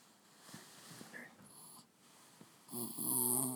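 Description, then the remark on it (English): Larry, a pet dog, makes snuffly vocal noises right into the microphone after being told to record, a short wheezy grumble that swells louder and rougher toward the end. “And now my dog Larry has a tip for you.”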